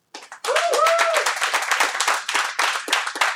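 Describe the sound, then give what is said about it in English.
A debate audience breaks into applause to vote no on whether democracy was existentially threatened by January 6th: dense, rapid clapping from many hands that starts abruptly and stays loud and steady, with a brief whoop early on. “And if your answer to that question would be no, we'd like to hear your applause.”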